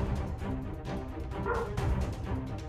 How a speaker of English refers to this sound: if anyone can hear my dog, it's probably because somebody left DJ's house